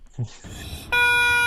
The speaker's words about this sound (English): Have you ever heard what it sounds like for a lot of rubber chickens to scream at one time? Yes. Why would I know that? Because it's fucking hilarious. It sounds like a room full of goats. Here, listen.